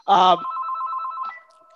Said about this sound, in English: let me shut up the phone here. I knew this was going to happen.